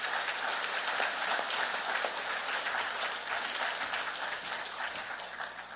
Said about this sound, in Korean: 우리 문 목사님 나오실 때 크게 박수함으로 환영하겠습니다.